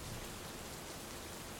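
Steady rain falling, a continuous dense hiss of drops spattering on surfaces, fairly quiet and even throughout with no voices.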